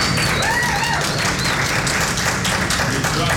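A crowd applauds steadily, a dense wash of many hands clapping at once, fairly loud and sustained throughout with no pauses.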